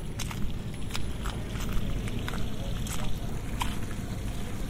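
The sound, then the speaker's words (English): Water rushing steadily through a pipe, a dense, continuous churning roar heavy in the low end, with a few faint knocks and splashes on top and no talking. “Well, there's quite a lot of water flowing here through a pipe.”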